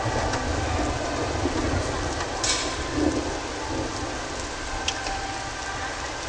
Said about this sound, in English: This is a field recording. There were a lot of accidents during the thunderstorms. They were terrible storms. What I would hear every day in Sweden.